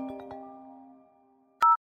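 A short electronic phone ringtone, an incoming call early on a weekend morning, plays a few quick chiming notes that ring out and fade, then ends with a loud, sharp two-tone beep. No one speaks.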